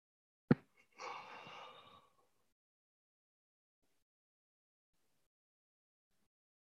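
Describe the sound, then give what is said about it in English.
A short click, then one breathy, drawn-out yawn lasting about a second, fading into silence. “Having a yawn, a full-bodied, delicious yawn.”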